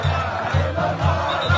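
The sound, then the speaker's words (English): A large, jubilant crowd in the capital, Khartoum, cheers and chants as word of Mr. Bashir's arrest spreads, voices swelling together in a steady rhythm of regular beats about twice a second, loud and dense with no single voice standing out. “As word of Mr. Bashir's arrest spread through the capital, Khartoum, the crowds were jubilant.”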